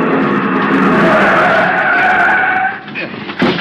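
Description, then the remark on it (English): A car brakes hard, its tires screeching loudly and steadily for a few seconds before the skid tapers off into a rough, uneven stop against a curb with a final scrape. “The other driver had jammed on his brakes and finally skidded to a stop against the curb.”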